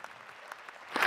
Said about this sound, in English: And I have to tell you, I picked him up from Dulles last night, and you know he flew yesterday morning from Medjugorje into Munich, and came here to be with you all. So I say that deserves a round of applause.